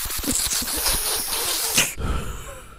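A loud, airy sniffing inhale, a harsh hissing rush of breath drawn in for about two seconds with a slight fluttering texture, then cutting off abruptly into a quieter low rumble.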